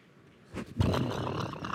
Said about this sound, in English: It's thunder.